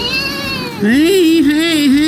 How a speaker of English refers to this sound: heard the cries from a kitten deep inside a drainage pipe, and he quickly called for help.